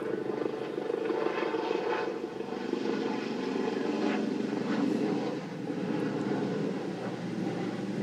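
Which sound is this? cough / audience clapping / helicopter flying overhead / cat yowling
helicopter flying overhead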